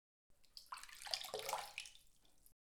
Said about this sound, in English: And the random number generator has once again deposited the coordinates in a bucket of water. Give me a moment to fish out the coordinates.